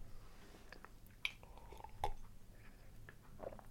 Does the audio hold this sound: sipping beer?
yes